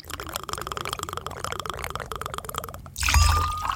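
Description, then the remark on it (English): A drink is poured steadily into a glass, a continuous splashing gurgle that swells louder near the end with a rising tone as the glass fills. “So if this is a good time for everybody to go ahead and grab your drink, pop open that beer, or mix together whatever concoction you have in mind, we'll be right back with some conversation.”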